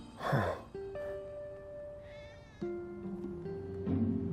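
Three stray cats on a cement fence meow in drawn-out, wavering cries that overlap one another, moderately loud, with no talking.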